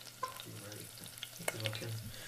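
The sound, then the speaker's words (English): Eggs fry in a pan with a steady sizzle and crackle, broken by sharp pops and a few scraping, stirring clicks over a low hum. “He does cook some mean eggs, though.”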